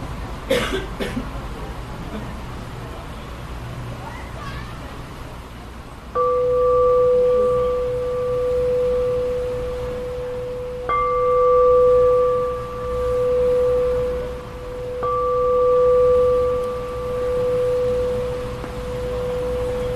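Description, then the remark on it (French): A meditation bell is struck three times, a few seconds apart, each strike ringing out as a clear, steady tone with a gentle wavering pulse. A brief cough comes before the first strike. “Impatient que ça finisse, si c'était ça votre expérience, peut-être que vous vous sentez libéré avec la cloche.”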